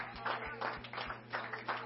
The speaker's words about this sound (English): Come on, let's bless him this morning. Come on, clap your hands. Let's bless the Lord.